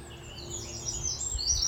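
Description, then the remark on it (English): Several birds chirp and twitter in quick, high-pitched bursts over a steady low outdoor rumble, the song fairly soft, with no one speaking. “The beautiful bird song.”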